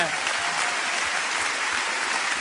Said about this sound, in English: Oh, you want to clap tonight? Come on, let's get the Lord a big clap. Hallelujah.